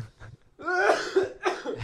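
A close, loud coughing fit: a quick burst of several harsh, throaty coughs in succession, with a short pause between a raspy opening and the final hack.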